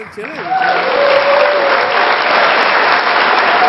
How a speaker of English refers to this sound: He gets an applause for being late.